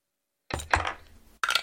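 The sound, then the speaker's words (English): Dice rolled for a stealth check clatter across a hard tabletop in a quick burst of clicks, settle, then a second short rattle follows. Fairly loud, with no voices. “None of the dice I've picked today like me.”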